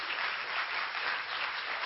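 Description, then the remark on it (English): A church audience gives the Lord a praise clap: a dense, steady wash of many hands applauding together with no pauses, bright and sustained for the full two seconds. “Let's give the Lord a great big praise clap.”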